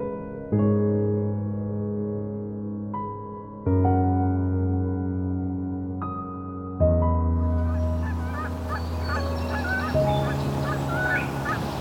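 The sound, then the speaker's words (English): Canada geese honk loudly in several long, drawn-out calls, with warblers, starlings and a chickadee chirping faintly in the background. “Here's some Canada geese.”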